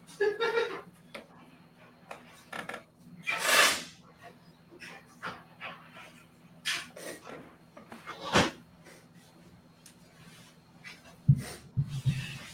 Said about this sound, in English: I'm gonna take a quick break to blow my nose, and I'll be right back.